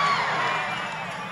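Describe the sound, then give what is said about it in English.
A recorded crowd cheering and shouting in a steady, dense roar of many voices, loud throughout and easing slightly toward the end. “that's just people getting hype”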